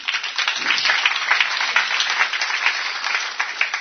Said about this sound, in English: Please applaud for the nation of Israel.